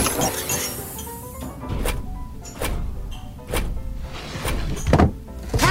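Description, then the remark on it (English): Saloon doors swing open and flap back and forth, giving a series of hollow wooden thunks and clacks at a steady rhythm, clear, with no one talking. “The saloon doors are open.”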